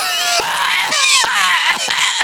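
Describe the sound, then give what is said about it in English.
A loud violent coughing fit: rapid harsh hacks roughly every half second, joined by strained, screechy, wheezing vocal sounds, like someone theatrically acting out a choking cough. “That bad of a cough.”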